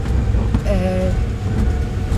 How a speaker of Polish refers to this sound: Tym razem jedziemy malutkim samochodzikiem terenowym.